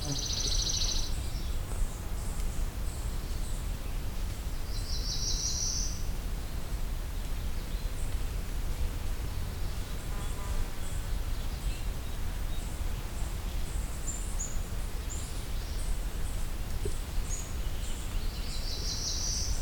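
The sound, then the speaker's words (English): A black-throated blue warbler sings by the side of a road, three short, buzzy, rising phrases several seconds apart, fairly clear over a steady low rumble, with faint high chirps from other birds or insects in the background. “There we go, black-throated blue warbler.”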